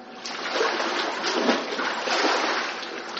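Water splashes and sloshes steadily for a few seconds as a person is immersed in baptism in the name of Jesus Christ and comes up, a bright, hissing churn with small surges and no voices.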